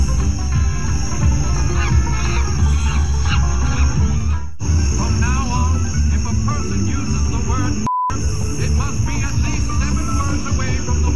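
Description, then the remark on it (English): Loud monkey noises, made by a neighbor in Virginia Beach to harass a Black family, whooping and shrieking in a dense, overlapping chorus, run through the whole recording without pause except for two brief cuts partway through. “Whenever we would step out of our house, the monkey noises would start.”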